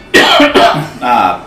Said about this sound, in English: Pardon me, I'm gonna cough.